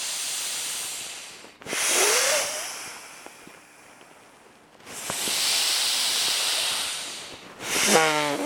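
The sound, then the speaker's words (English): Long hissing breaths during a yogic breathing exercise, breathing from the belly and chest. There are three broad airy exhalations separated by short pauses, each a steady bright rush of air like a snake's hiss, with no talking. “It is long, hissing sound should be there. The hissing of a snake.”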